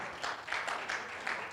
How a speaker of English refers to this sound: Clap your hands, all ye people.